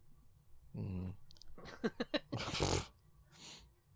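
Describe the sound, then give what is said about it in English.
Forceful huffing breaths: a low throaty grunt, then a few quick puffs building into a long, loud, rushing exhale, followed by a softer breathy hiss. “No, that was me huffing and you cussing.”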